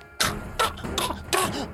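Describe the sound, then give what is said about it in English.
A voice imitates the choking, sputtering coughs of a man who has bitten through a pepper: four harsh, breathy bursts in quick, even succession, moderately loud, with no other talking. “just kind of like coughing.”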